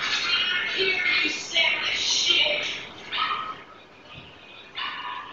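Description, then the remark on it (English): A dog barks in several quick bursts with short pauses between the volleys over a steady background hiss, in a film scene near the end of the film, at Buffalo Bill's house after the alarm goes off. “So this is the moment where she's got the dog.”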